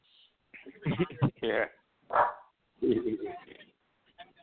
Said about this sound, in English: It's a drug sniffing dog.